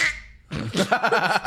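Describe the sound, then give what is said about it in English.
A person vocally imitates a duck, producing a nasal, squeaky quack that wobbles in quick rhythmic pulses for about a second, fairly loud, after a brief breathy noise. “Why do they squeak? They quack like a duck when I take them off.”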